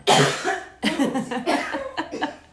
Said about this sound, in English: … just decided to have a coughing fit.